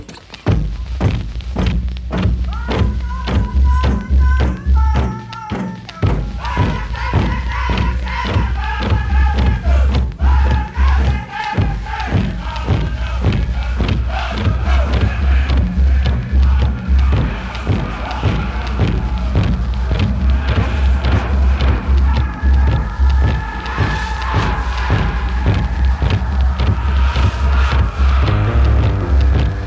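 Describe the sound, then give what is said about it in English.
A powwow host drum pounds a steady, fast, even beat while a group of singers chants loudly over it, with a brief break in the drumming near the start. “All right, host drum. Change it up, boys.”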